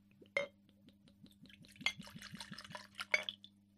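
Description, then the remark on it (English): Mead glugs and trickles into a small glass, a rising series of gurgles with a few sharp glassy clinks at the start, middle and end, fairly quiet. “So I'm going to put a bit in there, but then I've got a small glass to drink from.”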